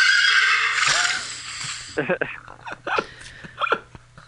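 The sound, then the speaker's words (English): A person imitates a horse's neigh, a loud, quavering whinny lasting about two seconds, followed by bursts of talking. “First bears, then ponies.”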